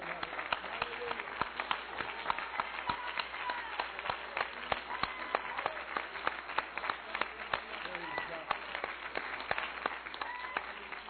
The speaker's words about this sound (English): Let's stand. Let's give the Lord a real good hand clap.